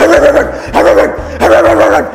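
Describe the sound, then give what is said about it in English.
A dog barks three times in quick succession, loud, each bark rough and snarling like an aggressive, frenzied animal. “it eats your muscles. Like, it's like a rabid dog.”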